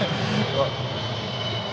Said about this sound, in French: Tant que ça tombe pas. Ce sont des podcasts qui sont marqués par les passages des avions, ok.